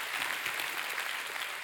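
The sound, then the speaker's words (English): An audience claps their hands to thank those who work to care for their families, a steady, dense wash of applause with many overlapping claps blending into a constant crackle at an even loudness throughout. “Can we clap our hands?”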